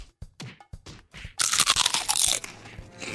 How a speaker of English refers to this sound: Got the munchies? Try Defco's new Black Legumes. Crunchy, crispy black legumes harvested from precious indigenous land with no proceeds going to the people who live there. Try it today. Become a real creature and munch our black legumes.